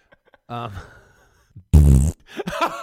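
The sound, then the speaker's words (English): A person imitates a fart with their mouth: a loud, buzzy, sputtering blast lasting about a third of a second, framed by short vocal noises before and after. “I don't need a sound box to do fart sounds, baby.”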